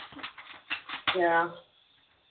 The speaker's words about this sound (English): All right. I'm shuffling the cards now.